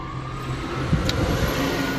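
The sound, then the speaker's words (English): A car engine rumbles and revs outside, a steady low drone with a brief flare partway through, and no one speaking. “Oh god, dude, I thought we were gonna witness another car chase.”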